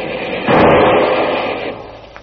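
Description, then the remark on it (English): A single loud shot from a Garand rifle strikes a searchlight, bursting into a harsh, roughly one-second crash of noise that gradually fades. No one speaks. “Hand me that Garand rifle, Kolo.”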